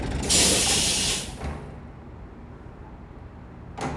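A bus's air brakes release a loud, sharp hiss lasting about a second over a low idling rumble, followed by a quieter stretch and a brief second hiss at the very end.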